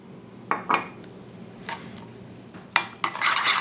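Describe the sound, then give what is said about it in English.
A spoon scrapes and clinks against a bowl in a series of irregular strokes, stirring a splash of milk into thick Greek yogurt to loosen it into a sauce, with brighter clanks toward the end and no one speaking. “Stir that in, and then you see it just loosens the texture up.”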